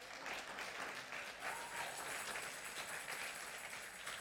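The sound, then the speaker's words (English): An audience gives a round of applause for their grunt workers: many hands clapping in a dense, steady patter that holds at an even, fairly soft level throughout, with no voices standing out. “And let's take a moment to give them, our grunt workers, a round of applause.”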